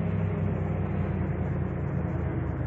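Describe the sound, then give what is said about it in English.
A car engine rumbles steadily as the vehicle comes around a corner and pulls over, a continuous low drone with no voices and no clear drop-off into silence. “We should just about be coming around this corner now. I'd better pull over.”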